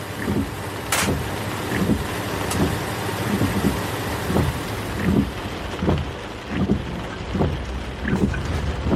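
Heavy rain pours down outdoors on a cold night in a dense, steady hiss, broken by occasional low thuds and splashes. No one speaks.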